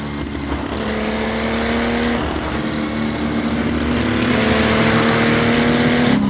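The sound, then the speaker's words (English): A car engine revs hard and accelerates, its loud, steady roar climbing in pitch with strong harmonic whine, continuous without any talking. “Such a visceral car.”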